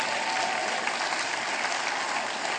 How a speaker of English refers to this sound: Twelve of you, golf clap, right? Come on.